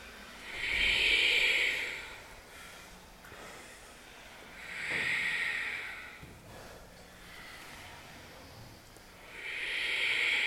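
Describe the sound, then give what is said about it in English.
Slow, hissing ujjayi breaths through the nose with an ocean-like rush during a yoga practice, three long audible exhales spaced a few seconds apart, steady and fairly soft with no talking. “Ujjayi.”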